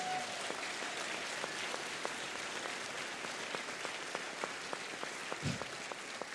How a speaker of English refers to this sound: I think we ought to give him a great big hand clap.